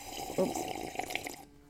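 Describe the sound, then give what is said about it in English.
A quick, moderately loud sip of Java (coffee): a wet slurp with a few bubbly, liquid gurgles lasting about a second, followed by near silence. “So I did a little sip with my delicious Java.”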